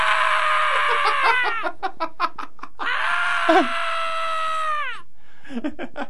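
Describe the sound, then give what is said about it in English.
A sound effect called Man Screaming 1: a man screams in two long, loud, strained cries that trail downward in pitch, separated and followed by choppy, gasping bursts of voice, alone with no talking. “No, that's Man Screaming 1.”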